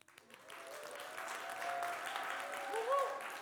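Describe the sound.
A crowd cheers and claps for a woman about to sing a Christmas song she wrote, a steady wash of applause swelling and holding, with a few voices whooping above it and one rising shout near the end.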